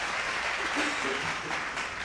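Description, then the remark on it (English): A short round of applause: dense, steady clapping that holds an even level for about two seconds, with no pauses or distinct individual claps. “Let me give him a hand clap for that.”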